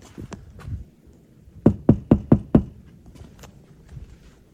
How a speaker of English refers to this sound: Knocking on doors. Knowing what could be inside.